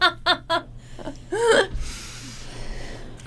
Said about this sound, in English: but what was that? The hiccup.